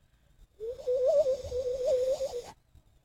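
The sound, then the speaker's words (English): A person imitates a bird call with a warbling, mid-pitched whistle-like tone that wavers rapidly up and down for about two seconds, fairly loud, then stops abruptly. “Bird call, dude. You don't know how to bird call?”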